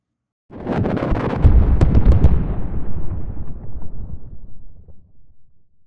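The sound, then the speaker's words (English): A sudden, heavy explosion bursts out as about 4 tons of rock upslope is blasted into gravel, then a deep rumble and scattered crackling debris trail off slowly over several seconds, with no voices. “About 4 tons of rock upslope from us became 4 tons of gravel.”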